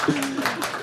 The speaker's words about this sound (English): Round of applause.